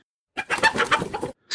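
A short flurry of chickens clucking, several busy overlapping clucks and squawks for about a second, clear with no talking, then another cluck just starting as it ends.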